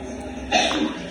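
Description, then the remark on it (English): A man lying on a bed sneezes once, a short, muffled burst in otherwise quiet surroundings, with no talking around it. “just sneezed.”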